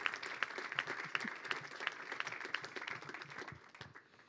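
An audience applauds steadily, many hands clapping together in a dense, even patter that stays fairly loud for a few seconds before beginning to thin out.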